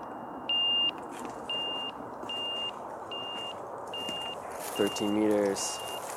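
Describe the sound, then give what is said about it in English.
An avalanche transceiver beeps during a mock search at the start of ski season, in a steady series of short, high electronic tones, about one per second, over broad outdoor noise, with a brief voice near the end. “I pull out the transceiver, I check the batteries, and I go through a mock search.”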